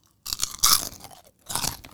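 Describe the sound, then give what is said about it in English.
Crunching of a chip, with several crisp, brittle bites and chews in quick bursts separated by short pauses, loud, with no talking. “I'm gonna crunch one more time, okay?”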